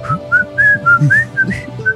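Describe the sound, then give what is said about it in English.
Someone whistles the bouncy Harlem Globetrotters theme, a quick run of about eight clear, bright notes that rise and fall in a jaunty rhythm over a low background hum. “The Harlem Globetrotters.”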